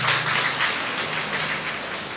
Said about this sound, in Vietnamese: Ông thấy người ta vỗ tay, ông cũng vỗ tay theo, không biết có hiểu gì không.